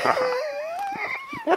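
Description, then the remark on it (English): A dog named Fly Jones, cued to sing, lets out a drawn-out, wavering howl that slowly rises in pitch, fairly loud, with a brief yelping lift at the end and no talking over it. “my dog Fly Jones with me today again.”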